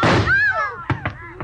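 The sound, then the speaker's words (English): Three short, sharp gunshots crack in quick succession in a drama scene, following a burst of noise and a wavering, high-pitched cry; a man is hit. The shots are loud and abrupt, with slight pauses between them. “He's hit, but...”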